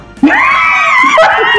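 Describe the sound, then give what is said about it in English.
A person lets out a loud, sustained wail imitating a screaming newborn baby, held for about a second before breaking off into a shorter cry. “I'm going to have a freaking screaming newborn.”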